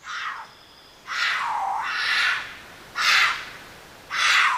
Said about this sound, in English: Mountain lions, aka pumas, cougars, or catamounts, they don't roar. They usually don't make much sound at all, but when they do, it's a sort of screech.